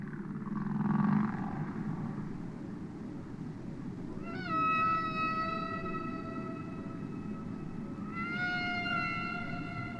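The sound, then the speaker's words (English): Long, eerie humpback whale calls with rising, sustained tonal moans repeat in a slow sequence over a constant low underwater rumble, fairly loud and clear with no talking. “One that's had worldwide attention is the song of the humpback whale.”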